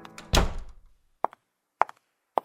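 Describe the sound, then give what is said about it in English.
A door swings shut with a single solid thud, then three sharp, evenly spaced footsteps click. “Shut the door, sit down.”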